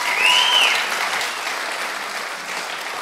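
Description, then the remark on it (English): A church audience claps steadily for the band, a dense wash of many hands that stays loud throughout, with a brief high whistle or cheer rising over it near the start. “But can we just give these guys a clap for bringing their gifts?”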